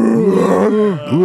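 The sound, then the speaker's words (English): A person makes a drawn-out, groaning vocal sound with swooping pitch, imitating a dog that can almost talk but can't, fairly loud, with no actual speech. “A dog that can almost talk, but it can't.”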